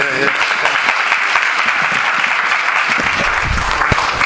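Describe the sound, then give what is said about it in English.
An audience at a church service claps for Jesus, a dense, sustained patter of many hands at a fairly loud, even level throughout, with faint voices mixed in beneath the applause. “Let's clap for Jesus again.”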